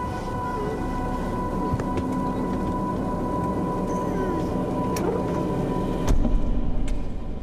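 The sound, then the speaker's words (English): A car engine rumbles steadily with a constant low drone and faint hum, a few sharp knocks along the way, then revs louder near the end as the car, which was waiting in a lane, drives away. “On the other side, in a lane, a car is waiting for us.”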